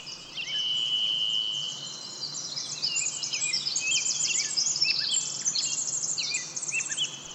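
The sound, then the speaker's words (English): A rapid, ornate bird song pours out continuously, dense with quick trills, chirps and pitch sweeps, heard clearly over a steady low background hum with no one speaking. “Birds are quick-fingered jewelers of air, crafting dozens of ornamented gems every second. In their modulations of pitch, amplitude, and timbre, we hear the vitality of their blood, muscle, and nerve.”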